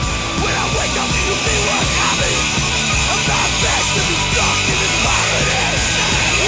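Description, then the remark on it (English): A loud, dense punk rock track with driving drums and distorted guitars, layered vocals shouted over the top and more yelling buried underneath, steady and full throughout. “Hear the yelling underneath.”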